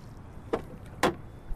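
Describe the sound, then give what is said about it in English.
A rowboat pushing out onto calm, glassy water, with two distinct splashy oar strokes about half a second apart over a soft, quiet background. No one speaks. “As we push out onto the glassy water, Di Bartolo tells me he really loves his job.”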